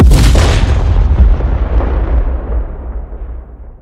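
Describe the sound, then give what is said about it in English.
A thunderous magical blast effect for the Thunder Wave spell: one loud, broad crack that swells into a deep rolling rumble, its brightness fading over several seconds while the low boom lingers. No voices. “So I would like to use a spell called Thunder Wave.”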